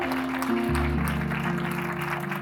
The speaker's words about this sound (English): Give him a hand clap, church. Come on.